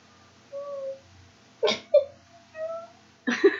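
A cat meows plaintively, three drawn-out whining calls spaced a second or so apart, broken by a couple of short, harsher bursts of noise.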